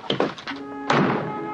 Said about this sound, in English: You know, I didn't notice it really until you pointed it out. They really do slam every door.